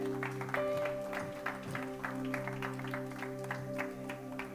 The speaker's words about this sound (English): Amen and amen. Give God one more hand clap.